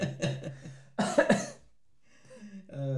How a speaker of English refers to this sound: See, I'm not even scared when you cough no more.